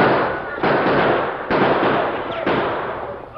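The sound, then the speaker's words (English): Gunfire in a shootout with a sheriff's posse: three loud, sharp shots crack out about a second apart, each trailing off into a dense, rumbling wash of noise that never fully clears between reports. “Hey, they're firing at us.”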